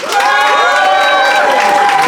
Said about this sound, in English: But if you think Ivo and Fanshawe, indeed, and therefore the stingy flatmate is in the right, applaud now.